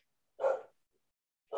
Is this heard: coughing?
no